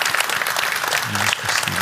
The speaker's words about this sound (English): Give the Lord a round of applause because God is good.